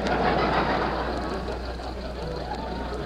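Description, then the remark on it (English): An old jalopy's engine runs steadily, a loud, continuous rattling rumble with a low drone underneath that never lets up for the few seconds heard, as Rochester drives the barely crawling car. “He's doing the best he can with this jalopy.”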